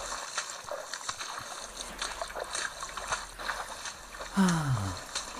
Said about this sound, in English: It's peaceful, you know. The water sounds. Wonderful. That it is.